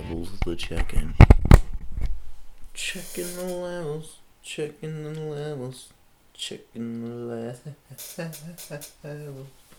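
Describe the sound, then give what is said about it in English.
A chair creaks and crackles in a burst of sharp, irregular clicks over the first couple of seconds, then falls quiet as a voice starts talking. “Oh, yeah, it's a fucking chair, man. You can hear that fucking chair, man.”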